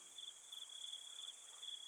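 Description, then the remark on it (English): Cicadas chorus at night in a steady, shrill drone with a faint pulsing shimmer, layered over a softer high hiss of other insects. No one speaks. “The fragrance from the bush floor, the song of the cicadas are sewn together in this haunting cosmic dirge.”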